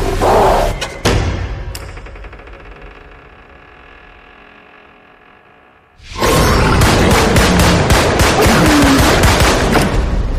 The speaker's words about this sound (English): So, good news is I shot that thing a bunch. Bad news is a Full Metal Jacket is not gonna work.